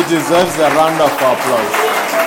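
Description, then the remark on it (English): An audience breaks into steady applause for God, a dense wash of clapping that holds for a couple of seconds, with raised voices cheering and calling out over it. “I think God deserves a round of applause.”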